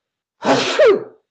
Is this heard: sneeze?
yes